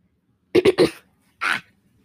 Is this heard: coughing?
yes